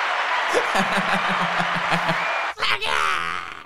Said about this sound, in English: Yay. The applause going off.